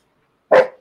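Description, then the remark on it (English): A single sharp, loud dog bark, bursting out of silence and tailing off quickly. No voices are heard. “You made my dog bark.”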